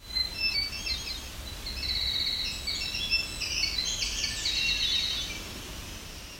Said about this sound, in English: This one included Winter Wren and Hermit Thrush.